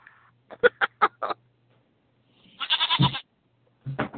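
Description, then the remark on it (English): Goats bleat with no talking: four quick, sharp calls in a row, then a longer wavering bleat after a short pause, and another call starting at the end. Fairly loud. “Something involving goats.”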